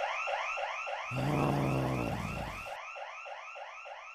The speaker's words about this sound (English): He did not do a good job entering the museum undetected. He was detected, and the alarm went off.